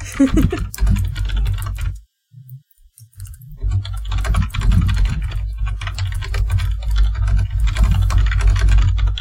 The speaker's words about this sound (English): Sorry, I'm typing notes.